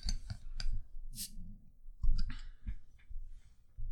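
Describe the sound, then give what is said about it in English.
Metallic clicks and scrapes as an opener catches the cap of a glass bottle of Lanillar Source fiery ginger beer, followed by a short airy fizz as it pops off, then more clinking against the glass. “So we need an opener. Here we go. You got an opener in here?”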